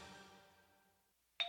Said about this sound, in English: Saturday morning, the doorbell rings, and like many Americans, I answer it.